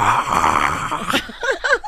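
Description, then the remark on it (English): A person, asked to roar, imitates a lion's roar with a rough, breathy growl lasting about a second, followed by a few short, higher-pitched vocal bursts that rise and fall. “Please roar for us.”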